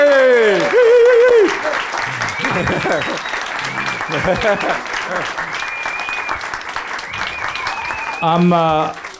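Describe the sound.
Sustained audience applause, a dense steady patter of many hands clapping, with voices calling and talking over it, swelling briefly near the end.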